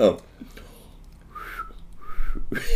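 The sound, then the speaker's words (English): Two short, airy whistled notes, each lasting about half a second with a brief pause between, sounding breathy and uncertain rather than clear, followed by some breathy vocal noise. “I can't whistle. I can do a bit of a whistle.”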